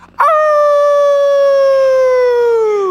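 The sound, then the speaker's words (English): A single long wolf howl, loud, holding a steady pitch for nearly three seconds before sliding slightly downward at the end, with no talking. “All the wolves howl at the end of the mantra.”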